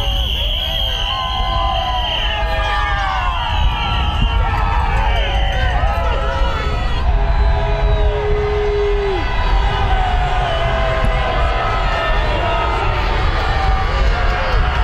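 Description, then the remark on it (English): A large crowd of President Trump's critics cheers and shouts steadily in the street as he is driven past, with whistles and horn-like tones rising and falling over a continuous roar of voices that stays loud throughout. “He was golfing in Virginia, driven home past his critics cheering.”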